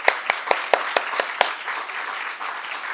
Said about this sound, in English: So make a round of applause for Skylight for letting us be here.